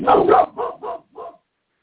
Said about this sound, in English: I'll kill you and them loud-ass motherfucking barking dogs.